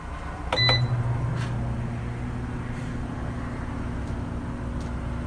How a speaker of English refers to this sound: Now you're going to hear this oven as it progresses, it's going to speed up. And that's probably because it's warming up more and more